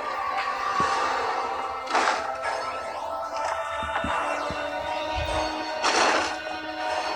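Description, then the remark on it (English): Heavy bangs and crashes as a man in a horror movie scene tries to bust through a door, with two big impacts standing out over a sustained, droning musical background. “It's like a Halloween 5 nod right here, where he's trying to bust through the door.”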